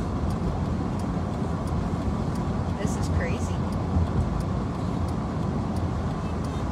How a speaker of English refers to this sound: And the cars are still coming. Yes, the cars are still coming. Look at them. Look.